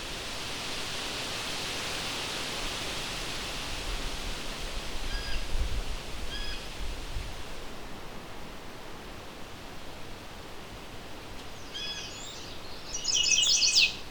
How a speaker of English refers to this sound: This is a chestnut-sided warbler.